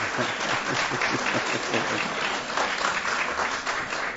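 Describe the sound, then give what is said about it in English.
An audience at a talk on biblical communication applauds a couple's first wedding anniversary steadily for about four seconds, a dense, even patter of many hands clapping at a fairly loud, constant level with no voices standing out. “Anche voi volete aspettare un po' prima di applaudire per vedere cosa succederà l'anno prossimo.”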